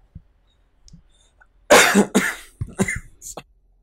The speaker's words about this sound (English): You're dying over there before you're able to mute your mic. Yeah, that I gotta say, you've been doing a great job muting on those coughs. Man, I've been dying over here.